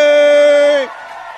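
A single loud, sustained high whoop holds one steady pitch for nearly a second, then cuts off, leaving a faint wash of crowd noise behind it, from an audience greeting actor Matthew McConaughey as he comes out as a guest.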